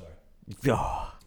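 A single drawn-out yawn: a sharp breathy intake that opens into a long, voiced, airy exhale, fairly loud and alone without any speech.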